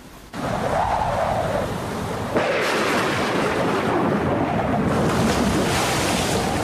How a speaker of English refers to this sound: Boom! Here's the storm